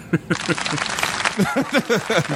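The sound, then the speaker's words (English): A burst of a canned sitcom clap track, a dense steady wash of clapping mixed with whooping, cheering voices, lasting a couple of seconds at a fairly loud level. “My bad, that was the clap track.”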